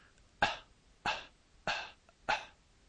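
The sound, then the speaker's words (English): Four breathy glottal pops, spaced about half a second apart, each made with more air than is necessary for the popping quality, so it sounds like a short cough. No talking, just the bursts against quiet. “Here's an example of how it would sound with more air than is necessary to produce the popping quality.”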